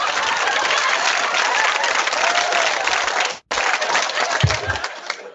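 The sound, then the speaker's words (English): Loud, dense applause from a studio audience, a steady wash of many hands clapping that cuts out abruptly for an instant and resumes before fading at the end. “The live studio audience agrees with me.”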